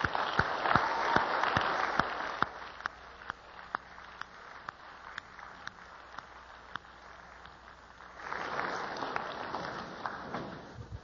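A crowd applauding God at Westmont: a dense patter of many hands clapping with sharp individual claps standing out, easing slightly mid-way then swelling again louder toward the end.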